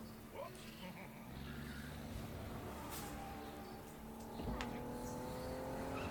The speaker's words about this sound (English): It sounded like a missile. A little misplaced, I would say. Sound effect. I think it was an actual truck.